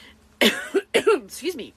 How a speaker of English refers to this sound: Excuse me for coughing there for a second. I'm actually growing some tomato plants and they're pollinating, and I think that's bothering my allergies. You know, it's not the COVID. It's not the COVID.